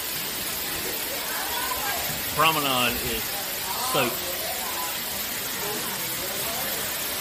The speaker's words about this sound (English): It's raining in the ship, in the Wonder of the Seas. Sprinkler systems have went off.